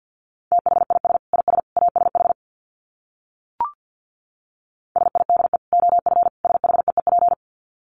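Rapid Morse code at about 50 words per minute: a single mid-pitched tone keyed in quick dits and dahs, sent in two bursts separated by a pause and a short click.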